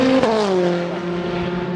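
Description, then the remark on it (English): A British Touring Car Championship race car roars past at full speed at Donington Park on Easter Sunday 2014, its high engine whine dropping in pitch as it goes by and fades away, with no one speaking. “It's Easter Sunday here at Donington Park in the second weekend of the 2014 British Touring Car Championship season.”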